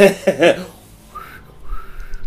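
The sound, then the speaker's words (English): A short burst of voice gives way to two thin, breathy whistled notes from someone learning to whistle, the second held a little longer, fairly soft. “Yeah, but it doesn't matter, because this is now a podcast about learning to whistle.”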